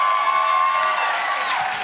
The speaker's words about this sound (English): If you're anointed and you know it, raise your hand. Some of y'all clapped your hand because he said, if you're happy and you know it, clap your hand.